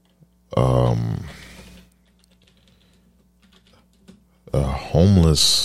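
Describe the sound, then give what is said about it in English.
Keys clatter on a keyboard in a quick, irregular run of light clicks for a few seconds. Loud vocal sounds come just before and right after the typing. “A homeless person typing it in.”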